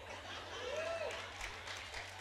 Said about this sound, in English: Come on, keep clapping.